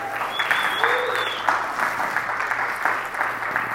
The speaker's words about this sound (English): We clap it up